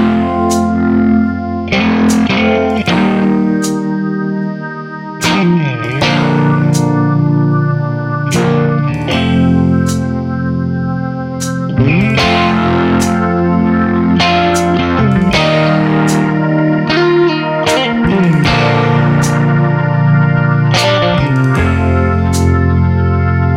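A loud southern rock song driven by distorted electric guitar, with a steady beat of crisp drum hits and sustained chords that hold full volume throughout.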